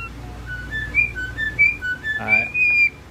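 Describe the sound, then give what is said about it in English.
A starling mimics R2-D2's chirpy electronic beeps and whistles in a quick, warbling string of bright, varied tones, loud, with a brief lower buzzy note in the middle. “How about when he did R2-D2?”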